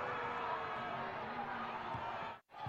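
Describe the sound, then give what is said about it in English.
A large stadium crowd roars and cheers in a dense, continuous wall of noise, loud, cutting out abruptly for a split second near the end, as the 10th and final penalty kick seals Pittsburgh's win over Birmingham Legion in a USL Championship playoff match at Protective. “And then on the 10th and final penalty kick, seals the victory in front of a huge partisan crowd.”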